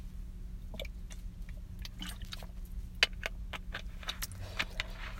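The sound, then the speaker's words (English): Someone takes a quiet sip of water: a string of faint, irregular wet mouth clicks and a soft swallow over a steady low hum, with no talking. “Hold on, I do need another drink of water.”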